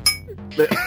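A small bell is rung: a sharp, bright metallic strike with shimmering high overtones that linger, followed moments later by a second ringing clang.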